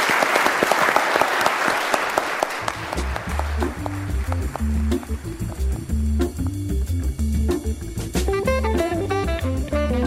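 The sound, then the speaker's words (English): A burst of audience applause for a mock jury, loud and dense with rapid clapping, quickly joined by a steady rhythmic music track with a deep bass line, while scattered claps fade beneath it. “Round of applause for our jury for really...”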